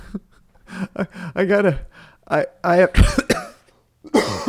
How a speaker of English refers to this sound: Now I'm going to have coughing fits that I have to cut out.